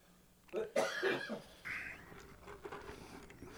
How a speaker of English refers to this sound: Oh, a lot of dead air there. I'm coughing.